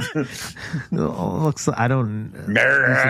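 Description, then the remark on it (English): A howler monkey calls in a series of loud, throaty, moaning bursts with short breaks between them. The final bursts rise to a higher, strained pitch. “There he is, my howler monkey friend.”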